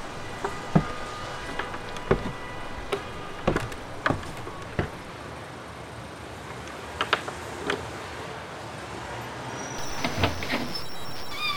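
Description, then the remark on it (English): Slow, heavy footsteps of a woman climbing creaky wooden stairs at an apartment building's entrance, each step landing with a dull thud and a groan of old boards, with no talking. “She turns into an apartment building's entrance and climbs the creaky wooden stairs.”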